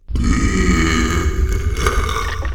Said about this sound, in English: A gigantic burp. The force of the burp knocks both you and Denny over, right into the quicksand.